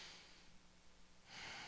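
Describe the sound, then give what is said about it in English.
An audience draws in a deep breath together on cue, a soft airy rush that holds steady, then swells louder near the end. It sounds quiet, with no talking. “there was this massive inhale that took place together”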